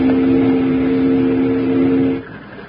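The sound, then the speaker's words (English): A riverboat steam whistle, blown by pulling its whistle cord, sounds one long, loud, steady low-pitched blast lasting about two seconds, then cuts off abruptly, leaving only faint background rumble. “Pull that whistle cord again, Jingles. We got to find some wood along here someplace.”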